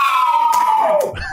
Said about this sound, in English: Was that a whip cracking? That was his hands. That was a clap and a woo.